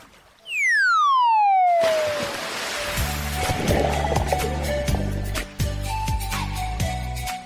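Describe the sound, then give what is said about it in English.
A falling slide-whistle tone drops into a loud splash of something plunging into water, followed by churning water and a bouncy rhythmic musical jingle. “There we are. We've dived in.”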